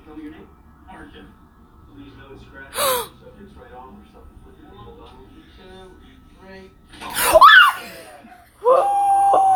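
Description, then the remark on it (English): A person lets out a sudden, loud scream, its pitch sliding sharply, then a second sustained high shriek, with a sharp gasp-like burst earlier and quiet talk murmuring underneath. “Sorry for screaming.”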